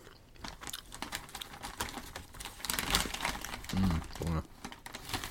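Continuous crinkling and rustling of an industrial-size bag of Trolli sour gummy worms, with irregular crackly bursts throughout and a brief low murmur near the end.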